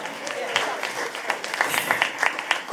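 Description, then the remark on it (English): Scattered, uneven clapping from an audience at a debate, thin and lacking energy, with individual claps poking out irregularly rather than building into a full round of applause. “It was a bit half-hearted from some of the claps.”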